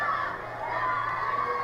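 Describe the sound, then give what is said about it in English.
A crowd of young people shouting and cheering together at an event with the Pope on stage, a dense, continuous roar that holds steady without pause. “And it's constant this constant shouting.”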